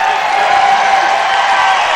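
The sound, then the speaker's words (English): Coldwater fans at a baseball game against Willisburg cheer loudly in a steady, dense roar of many voices that holds at full volume for the whole two seconds, with no single voice standing out. “And the Coldwater fans get very loud as everybody in the state rooting for Willisburg to be knocked off, you would assume, coming off of two straight state championships.”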